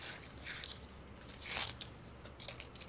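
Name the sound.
paper rustling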